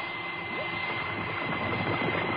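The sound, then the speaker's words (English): A submersible's engine drones steadily as its main battery is jettisoned and engine power drops, a dense, rumbling mechanical hum that stays fairly even throughout, with no voices present. “There'll be a drop in engine power as soon as the main battery disconnects, so don't get alarmed.”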